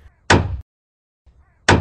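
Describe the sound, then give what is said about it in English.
Two loud hammer thwacks land about a second and a half apart, each a sharp, bright crack with a brief ringing tail, preceded by a soft low thud. No voices. “Which of these hammer thwacks went wrong?”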